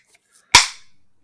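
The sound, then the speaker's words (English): A Coors Light beer can cracks open: two faint clicks of the tab, then one sharp, loud pop followed by a short hissing fizz that fades within half a second. No one speaks. “The crack isn't even that great.”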